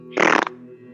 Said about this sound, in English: Skelly pushes the rotted corpse off the gurney. It lands with a fart.